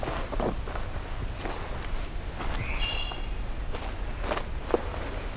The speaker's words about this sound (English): Oh, we've got a wood thrush somewhere here. Okay, as I'm heading back, getting treated to a wood thrush here.